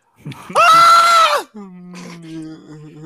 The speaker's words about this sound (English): What'd you scream for? If you saw the situation he was in, you would have screamed too.